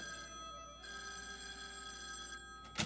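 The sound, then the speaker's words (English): An old-fashioned telephone bell rings steadily for a few seconds with a bright metallic tone, an early morning phone call to a ranch, then a short clunk is heard near the end. No one speaks. “The next morning, the rising sun brings an early morning phone call to the famed old Harmony Ranch.”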